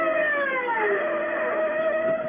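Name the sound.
siren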